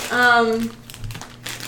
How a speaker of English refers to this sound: For those of you at home, that crumpling noise is the bag.